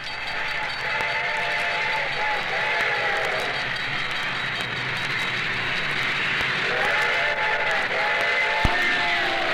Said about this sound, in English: The train was coming closer. I could hear its bell ringing and the cry of its whistle.